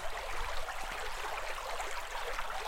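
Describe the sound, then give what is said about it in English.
A river a couple of metres wide and about knee-deep, on a hike to the Tears of MacDonald waterfall, flows steadily, a continuous soft rushing and babbling of water that holds an even level throughout, with no voices or other sounds breaking in. “I can't see the waterfall from up here though, just a mumbling river and a path continuing on the other side.”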